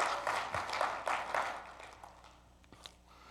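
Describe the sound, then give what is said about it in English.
Soft, scattered clapping from a few people in a church, a quick run of claps that fades out after about a second and a half, with one or two stray claps afterward. “Clap.”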